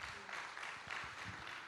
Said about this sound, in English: And yeah, you can give the Lord a good round of applause.